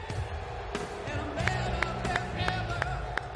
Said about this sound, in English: Oh, what's the coach clapping for Eric Bischoff?